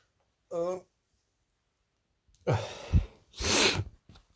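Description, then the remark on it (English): A short voiced groan, a pause, then loud, breathy, strained exhalations as a person yawns and stretches in bed while changing position. “As I was saying, sorry, having a bit of a stretch there.”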